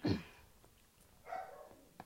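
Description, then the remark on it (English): A dog in the back barks twice in the background, short muffled yelps separated by about a second, faint and somewhat distant with no one talking. “I do also have a dog, which is in the back.”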